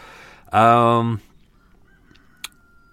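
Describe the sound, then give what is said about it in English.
A cockerel lets out one loud, harsh, buzzy crow lasting under a second, followed by quiet background with a faint click. “You can hear that cockerel.”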